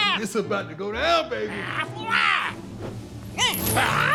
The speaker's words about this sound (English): Is that a goat? You talking about me? Gap. I think this goat is saying gap.